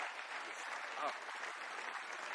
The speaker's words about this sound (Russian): Слава Господу, аллилуйя. Давайте дадим сильный аплодисмент Господу.